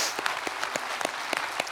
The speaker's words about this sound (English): Amen. Can we give those guys a big round of applause that raised their hands for the first time?